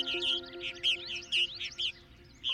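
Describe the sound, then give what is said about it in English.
Dense, overlapping chirps and twitters from a flock of about 4,000 martins at once, a busy chattering chorus with bursts of louder calls over a low steady hum. “It's like you're watching a collective of 4,000 birds that are thinking the same way and doing the same thing.”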